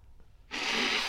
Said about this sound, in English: See, folks, is that he's blowing his nose right into this bowl of cereal that I'm eating. Snotty bunches of oats.